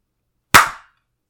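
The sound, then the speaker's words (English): A single sharp hand clap rings out of silence, bright and crisp, with a short decaying tail lasting a fraction of a second before it fades to quiet. “That was a nice clean clap.”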